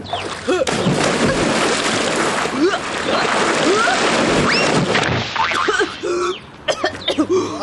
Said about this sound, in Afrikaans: kyk saam met Benny hoe ek so 'n dolfyn in die water induik